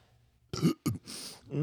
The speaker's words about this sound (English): And the beer burps don't smell bad.